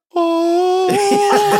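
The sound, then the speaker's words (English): A voice imitates a queef: a steady, mid-pitched hummed tone that halfway through breaks into a rough, fluttering sputter, lasting about a second and a half, fairly loud and alone. “Queefs sound like this, right?”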